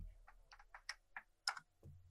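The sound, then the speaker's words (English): Dice rolled for intelligence checks clatter in a quick, uneven run of sharp little clicks and knocks, fairly quiet, with no voices over them. “And just roll intelligence checks, everybody. Looking for a 15 dice or better.”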